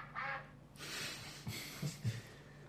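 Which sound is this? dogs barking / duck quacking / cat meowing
duck quacking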